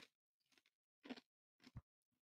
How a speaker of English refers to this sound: excuse me while I chew ice, I apologize.